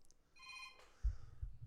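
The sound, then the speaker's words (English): A short electronic phone ringtone chimes a bright, steady tone for about half a second, signalling an incoming phone call, followed by a couple of low muffled thumps like the phone being handled. No one speaks. “Oh, I'm getting a phone call.”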